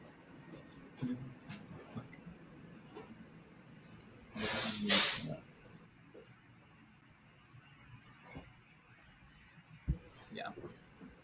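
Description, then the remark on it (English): One forceful nose blow, a harsh, breathy burst lasting about a second that briefly swells in two surges, set against an otherwise quiet stretch with faint scattered clicks and rustles. “I just have to blow my nose.”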